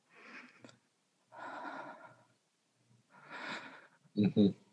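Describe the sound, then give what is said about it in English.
Hushed, controlled breaths, slow exhales and inhales separated by silence, ending in two short sharp intakes of air. A voice actor imitates a character breathing quietly while hiding from a killer in a bathroom, trying not to be heard. “And I'm trying not to let him hear me breathing or something. So this is all you're going to hear on the mic.”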